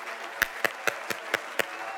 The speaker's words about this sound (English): Oh, clap your hands unto the Lord, all ye people. Shout unto God with a voice of triumph.